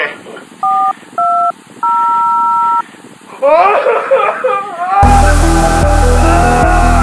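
A telephone number is dialed with touch-tones: two short beeps and one longer tone, clear, followed by a burst of rising chatter and then loud, dense music.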